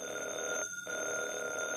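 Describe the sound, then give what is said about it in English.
A telephone rings steadily, its bright metallic trill broken by one brief pause before carrying on, with no one talking over it. “If I hadn't heard it with my own ears, Evans, did that phone ring?”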